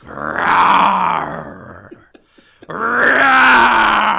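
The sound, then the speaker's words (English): A person lets out two long, loud, throaty roars, each lasting over a second and a half, separated by a short pause with a few faint clicks and breaths. “I am not a roaring success. I am simply roaring.”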